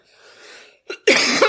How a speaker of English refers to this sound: Sorry about the cough.